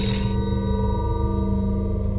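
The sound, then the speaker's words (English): A telephone bell rings steadily in a study at home, a bright metallic tone that holds for a couple of seconds after a brief clattery start, with no voices. “As he read in his study, the phone rang.”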